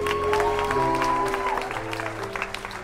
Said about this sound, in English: You come up here, give her a round of applause.